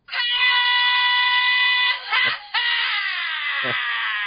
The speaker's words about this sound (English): And then I wait for an opportunity to hear Mr. Scream. Oh, yeah. Scream so much. What a great soundbite.